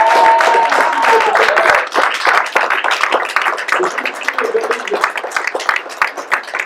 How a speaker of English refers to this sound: If you truly believe it, somebody clap your hands.